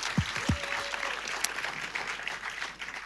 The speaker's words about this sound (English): You should give yourselves a round of applause. Yeah.